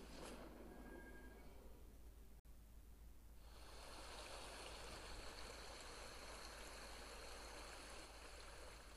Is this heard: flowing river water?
yes